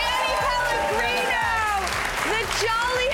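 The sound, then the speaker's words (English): An audience claps steadily and loudly for about three seconds for a person shoveling snow, a dense wash of applause with voices calling out and cheering on top of it. “It's a sleigh, and I've never had people clap for me shoveling the snow, so it feels really good.”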